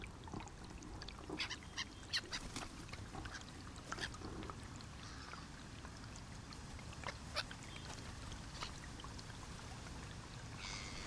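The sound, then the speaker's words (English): A flock of whooper swans, migrants from Iceland, calls outdoors at a loch, their bugling honks overlapping irregularly over a steady wash of background noise, with no one speaking. “About one third of the world's population of hooper swans come to the lock from around October onwards.”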